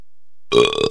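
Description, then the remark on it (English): A man belches on command: a single loud belch bursts out after a moment of silence, deep and rumbling with a strong tonal, almost musical pitch that wavers briefly before cutting off. “You belch on command.”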